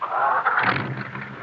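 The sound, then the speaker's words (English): A car engine starts with a turn of the key: a brief grinding crank from the starter, then the motor catches and settles into a steady low rumble, loud with no voices. “Put them in the ignition and turn them.”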